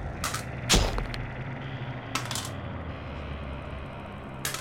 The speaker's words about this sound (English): That's a lot of dice being rolled. That's a lot of dice, and they're going to get doubled.